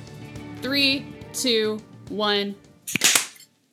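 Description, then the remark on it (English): A voice counts down "3, 2, 1" in an even, drawn-out rhythm, then a single sharp hand clap for syncing rings out loud and crisp, with a little rapid flutter, before silence. “All right, and then I'll count down and we'll do the clap.”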